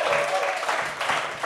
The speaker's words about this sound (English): Where are you from? Sweden! Sweden! Welcome to the show! Round of applause for Sweden, everybody!